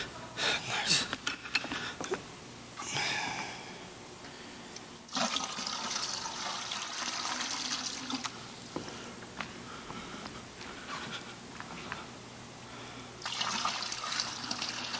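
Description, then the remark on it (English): Water pours into a container in several splashy, rushing bursts with short pauses between them, the gurgling stream rising and falling in strength. “You need some more water?”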